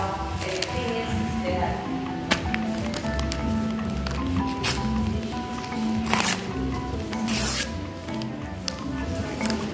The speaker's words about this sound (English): So now, what am I doing? I'm tearing up papers for the candles. Yeah. Yeah, because I'm out of paper.